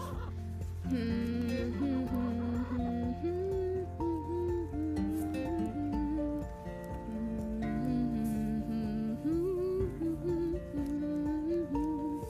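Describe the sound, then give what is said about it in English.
Chickens cluck and squawk continuously for the whole stretch, a busy, fairly loud flock sound with overlapping calls rising and falling in pitch, and no one talking over it. “Chickens.”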